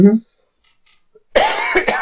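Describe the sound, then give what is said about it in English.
After a brief bit of voice and a short silence, a loud cough bursts out from a speaker who has been sick for the last week, rough and breathy, lasting well under a second. “I'm sorry, I keep coughing.”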